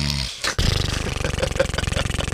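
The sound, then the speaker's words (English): A voice imitates the way the speaker snored on a flight: a harsh, rattling, low guttural roar that pulses rapidly and stays loud, with a brief breathy break before the rasping buzz resumes. “That's the way I snored.”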